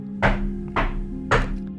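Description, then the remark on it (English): Three heavy, dull knocks on a door, spaced about half a second apart in a steady rhythm, each a solid thud with a brief woody ring. A low steady hum sits underneath, and no one speaks. “One evening, he went up to his son's door and boldly knocked on it.”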